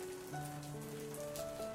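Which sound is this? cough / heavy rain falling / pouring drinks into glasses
heavy rain falling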